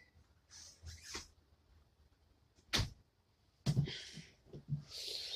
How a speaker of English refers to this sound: Why is your door swinging at all? Close it. Close your door.